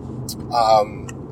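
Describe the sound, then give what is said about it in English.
Steady low rumble of road noise inside a car driving along a winding highway with the music off, constant, with a brief voiced sound and a couple of short clicks breaking through midway. “The reason why I didn't want to wait to record this was because in the moment right now, what I'm thinking about with the music off in my car, while I'm driving this highway by myself, is that there's two families mourning right now.”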